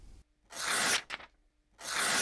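Two quick bursts of ripping paper used as a video transition cut effect, a long rasping tear followed by a brief crackle and then a second broad tear after a short gap, bright and noisy with no voices.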